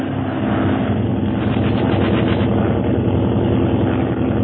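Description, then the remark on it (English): A loud, steady drone of propeller aircraft engines as the planes climb to gain altitude fills the whole stretch, a dense rumbling roar with a faint pulsing throb and no voices. “They have seen your signal. They are beginning to gain altitude.”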